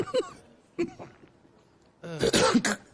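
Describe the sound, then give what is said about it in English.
A man coughs: two short, hoarse bursts, then a longer, harsher fit of hacking near the end, fairly loud with nothing else around it. “He coughs up a fur ball or something.”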